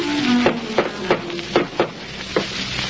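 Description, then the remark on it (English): Professor McGargle raps smartly on the door of Mrs. Tubbs' house in the early evening: six sharp raps falling in an uneven rhythm of single and paired knocks over a steady background hiss. No one speaks. “Tubbs' comfortable house, he adjusts his purple brocaded vest, flourishes a tattered handkerchief at his dusty shoes, and raps smartly on the door.”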